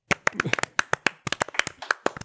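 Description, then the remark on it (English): Sharp hand claps in a quick, uneven rhythm, around fifteen in a couple of seconds, as if tapping out a tune, with no clear talking over them. “Does that mean we could clap the whole theme song?”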